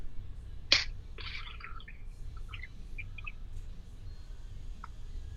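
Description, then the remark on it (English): Birds chirp outdoors by a winding creek with new grass and big trees under blue skies, in scattered short, high tweets and trills, fairly soft above a steady low background rumble, with one sharp click near the start and no talking. “See? They're the birds. Yeah, they're starting to chirp.”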